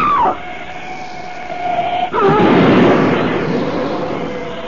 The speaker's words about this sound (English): That ugly black shape, it smashed Butler's car to bits as though it were an eggshell.